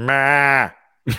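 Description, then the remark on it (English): A person imitates a goat's bleat with one loud, sustained, nasal call lasting about half a second that trails off, followed by a brief start of speech. “It is really hard to do a goat that doesn't sound like a sheep.”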